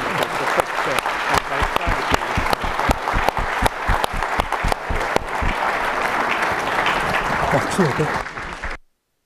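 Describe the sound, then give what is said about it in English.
An audience at CSIS applauds the president steadily for about eight seconds, a dense wash of loud overlapping claps with sharper individual hand claps standing out, before the clapping cuts off abruptly. “And we don't have a place to store a horse at CSIS, so we're just going to have to, as our gift to the president, thank him with our appreciation and applause.”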